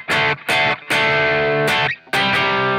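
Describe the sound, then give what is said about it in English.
Loud, gritty electric guitar chords played through a King of Tone overdrive pedal in OD mode, volume up, distortion down, tone in the middle, into a clean amp tone, in a stop-start rhythm: several short bursts and one longer ringing chord, separated by brief silences, with no voices. “So volume up, distortion down, tone kind of up, tone in the middle, yeah.”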